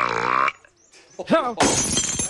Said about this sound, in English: Every time I hear her burp, I do think of you. But she obviously just burped and threw a glass.